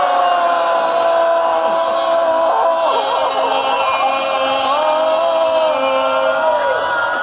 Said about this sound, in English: I know you're good at saying goal, but I think our crowd wants to help out. So can we do it together?